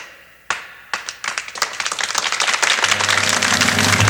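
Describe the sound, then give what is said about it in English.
Applause starts with a few scattered claps, then quickly swells into dense, continuous clapping from a crowd, growing louder and steadier. A low tone hums underneath toward the end. “That happy sound rolls over you. Applause when you hear it.”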